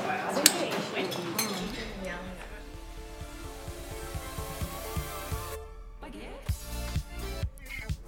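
Busy café ambience at Cam's Cafe in Abbotsford Convent: dishes and cutlery clink sharply now and then over a steady hum of indistinct background chatter, with the clatter loudest near the start.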